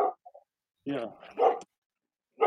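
A dog barks in a few short, loud bursts with brief gaps between them, including one longer run of rough barking in the middle.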